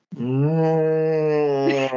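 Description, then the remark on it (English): A person vocally imitates a roaring movie creature, sounding like Chewbacca from Star Wars: one loud, drawn-out, low groaning cry held at a steady pitch for about two seconds, with no other talk. “you sound like Chewbacca.”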